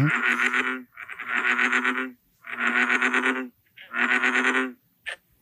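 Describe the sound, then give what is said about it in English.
Four loud, drawn-out bullfrog croaks, each lasting about a second with a buzzy, vibrating texture, separated by short pauses and followed by a brief faint call. No voices. “Well, let's hear what a real bullfrog sounds like.”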